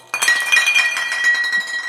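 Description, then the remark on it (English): A box of empty glass bottles is knocked over in a castle basement: a sudden burst of clinking, rattling bottles toppling over, with bright ringing tones and jangling clatter continuing for nearly two seconds before settling. “I just knocked over a box of empty bottles.”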